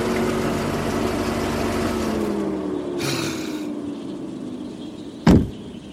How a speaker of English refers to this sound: Ralph Ansbach slammed his car door shut.